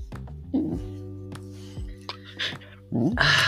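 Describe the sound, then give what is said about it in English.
A dog lets out a few short barks and throaty, growling vocalizations, spaced irregularly, with a louder, rougher outburst at the end; no one talks. “She's a very talky dog, so we're just going to keep her here for a minute.”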